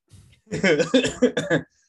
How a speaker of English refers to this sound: I'm good. I'm choking a little bit. Yeah. Coughing.